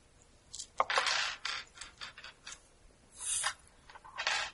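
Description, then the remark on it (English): Dice rattle and clatter across a hard tabletop in several scratchy bursts, with sharp clicks between rolls and no talking. “Right, and lots of dice.”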